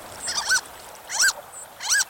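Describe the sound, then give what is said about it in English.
Harlequin duck calls: three squeaky, high-pitched notes with a rising-falling whistle quality, spaced evenly about two-thirds of a second apart, clear against a quiet background. “Get a good look at a harlequin duck at our website”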